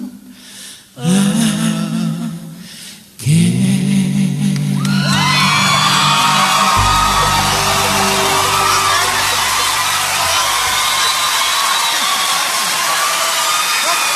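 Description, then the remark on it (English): A large crowd at the Grand Old Opry cheers and whoops loudly in a dense, sustained roar that dips briefly after a few seconds, then surges back and holds steady to the end, with scattered high shouts on top. “And as you can hear, the crowd really enjoyed that at the Grand Old Opry.”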